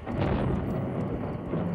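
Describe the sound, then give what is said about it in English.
Golf ball-sized hail pelts steadily against windows, a dense, continuous clatter of countless small impacts forming a loud, rough roar with no pauses and no voices. “Then he heard the clatter again. It wasn't kids. It was hail.”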